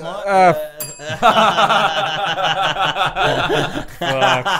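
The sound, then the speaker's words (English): A person hits a bell, giving a single bright ding that rings out sharply, followed by a burst of chuckling and laughter as several people talk over one another. “Can you repeat what …  said? Because he's hit the bell.”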